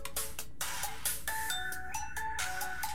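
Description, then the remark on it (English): A cell phone rings with a bright, melodic electronic ringtone, a quick run of beeping tones repeating over about three seconds, fairly loud, with no voices. “And the telephone rang, and with cell phone we're having fun here.”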